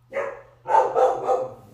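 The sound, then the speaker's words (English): A dog barks: a single bark, a short pause, then three more in quick succession, with no talking over it and a faint steady hum underneath. “Good Lord, doggy mom life.”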